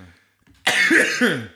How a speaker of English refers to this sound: Oh, I've lost it. I've got a cough.